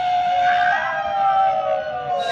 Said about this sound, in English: That yelling at the end of that is four of us out in the street in front of my apartment screaming at midnight on Y2K.